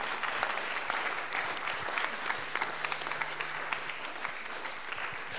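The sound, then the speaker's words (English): Steady applause from an audience fills the space, many hands clapping densely and evenly for several seconds, with no voices standing out above it. “The clap for the person who said.”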